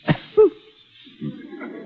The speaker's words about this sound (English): You will wait in the anteroom until you hear me cough. Like this.